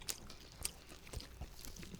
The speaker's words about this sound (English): So this is the Golden Chick, right? With the spice dust. Golden tender sandwich. It does taste better than Church's. Make sure we're doing this SMR shit. ASMR shit right into the microphone. You chew that shit.